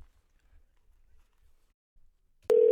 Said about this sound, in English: Should I call him from the Skype?